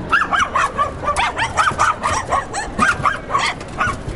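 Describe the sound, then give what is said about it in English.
A Tibetan Terrier barks and yips repeatedly, a rapid, uneven string of sharp, fairly loud barks with brief whiny edges and no pause over a few seconds. “They're Tibetan Terriers, which are from Tibet.”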